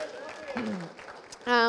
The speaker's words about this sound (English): So let's give a quick round of applause for our visitors.